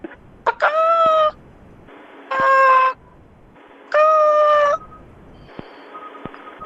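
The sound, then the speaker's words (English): A person imitates a chicken with three drawn-out, wavering clucking bawks in a steady rhythm, fairly loud, followed by a faint tail-off, with no other talking. “Yeah, I'm just making chicken noises to you.”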